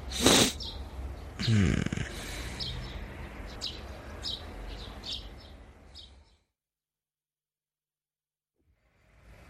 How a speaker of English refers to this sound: Birds chirping. Rise and sunshine.